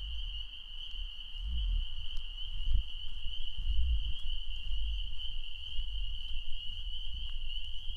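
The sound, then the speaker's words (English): A dense chorus of frogs calls at night in April under a moon shining through trees, a steady, high-pitched jingling trill like sleigh bells that never lets up, growing louder, layered over a low, rumbling background with no voices. “What a night to be a frog. Oh man, listen to these guys. They're going to town.”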